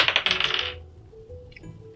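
A die clatters across a hard tabletop in a quick, rattling burst of bright clicks that fades within a second, followed by quiet room tone and one small knock.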